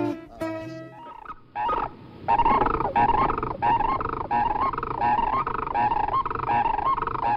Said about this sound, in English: Soaring high in the sky, the striking sandhill crane often is heard before seen. In contrast to the familiar flying V of Canada geese, sandhill cranes fly in a mixed jumble, yodeling and trumpeting.